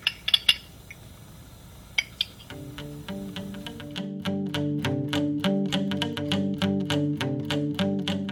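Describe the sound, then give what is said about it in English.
Handcuffs clicking during an arrest as a phone is turned off: a quick cluster of sharp metallic clicks and rattles, then another brief click, before steady rhythmic music with a repeating beat fades in and takes over. “I'm still holding the phone in my hand, so, like, you can hear the handcuffs clicking as, like, I turn the phone off.”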